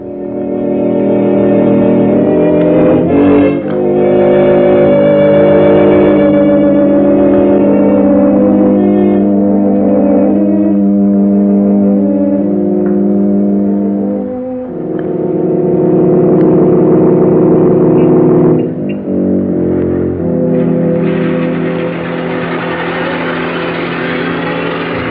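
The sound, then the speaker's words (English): A car engine, brought round by a driver for his employer, runs steadily for the whole stretch, its low droning hum shifting pitch a few times as it idles and eases to a stop, with no one talking. “Your car, sir.”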